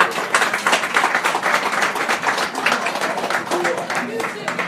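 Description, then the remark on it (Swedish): A burst of lively applause from a group of people, dense overlapping claps sustained throughout at a steady, fairly loud level, with a hint of voices mixed in. “Applåd”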